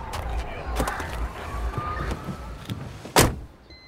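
getting into a car

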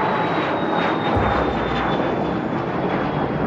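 airplane engine in flight

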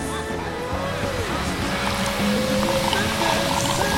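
coffee being poured

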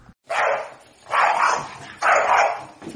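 dog barking sound effect

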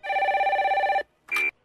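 telephone ringing

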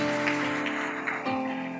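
audience applause

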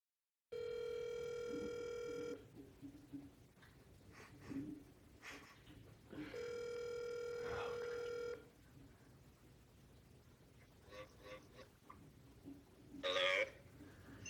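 telephone dialing and ringing

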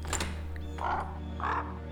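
crow cawing

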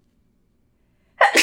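sneeze

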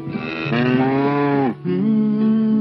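cow mooing

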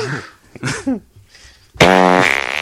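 fart

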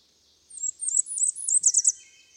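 warbler song

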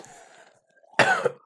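cough

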